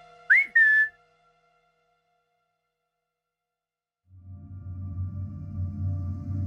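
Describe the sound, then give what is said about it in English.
A short, bright whistle, someone at a cracked-open door whistling for dogs, rises and then holds steady, two quick loud bursts, followed by silence and then a low rumbling drone. “Weep, going to his door, cracks it open, and whistles for Saskia's dogs.”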